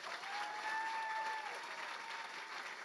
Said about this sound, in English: Let's officially give a big round of applause to Gary Vaynerchuk.